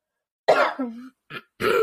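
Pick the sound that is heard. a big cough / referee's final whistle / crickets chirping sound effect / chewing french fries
a big cough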